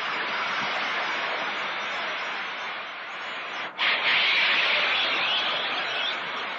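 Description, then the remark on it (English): A dense, steady roar from a big baseball stadium crowd as George Scott, a popular favorite, comes up to bat, with no talk. It breaks off briefly midway, then swells back louder, with shrill whistles rising through the din. “That'll bring up George Scott, a popular favorite here. Listen to the crowd.”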